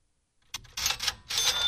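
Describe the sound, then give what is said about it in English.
A short cash-register cha-ching notification that plays each time someone visits a website: a bright mechanical clatter in quick bursts, ending with a ringing bell tone. It is clear, with no one talking. “Okay, so I get the cash register sound every single time somebody goes to my website.”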